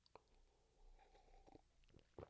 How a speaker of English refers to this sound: If you have a beverage, which I always recommend bringing a beverage to our daily gatherings, let's take a sip together.